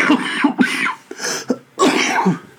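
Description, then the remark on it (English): Three rough, raspy coughing bursts from a person with a cough come in quick succession, fairly loud, each with a throaty, throat-clearing edge and short pauses between them, recorded in winter in the UK. “Everyone, it's winter in the UK and I'm still, as we record anyway, and I have a bit of a cough, so excuse that.”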